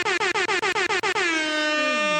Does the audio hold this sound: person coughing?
no